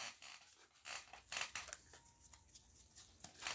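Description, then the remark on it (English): A deck of cards being shuffled during a game of Exploding Kittens, with quiet, crisp papery riffles and rustles coming in several short bursts over a few seconds, with no voices. “Shuffle it”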